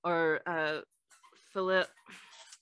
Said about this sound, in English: our dog is killing this. I feel like if he stops squeaking